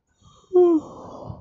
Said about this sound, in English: Sorry. Yawning a lot.